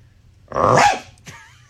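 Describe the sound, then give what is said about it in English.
A man lets out one loud bark imitating a dog, followed by a brief, softer trailing yelp, with no talking around it. “It was like he barked like a dog.”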